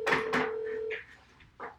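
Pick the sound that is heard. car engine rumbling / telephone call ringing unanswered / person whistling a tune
telephone call ringing unanswered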